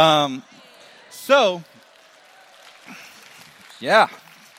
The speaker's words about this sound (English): By a round of applause, I assume you're volunteering to send them to college?